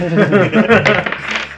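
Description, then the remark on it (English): Dice clatter and tumble across a table during a tabletop role-playing game in a quick burst of rattling clicks, with voices murmuring underneath. “Throw so, with the dice away. So we're rolling on the perils of the war.”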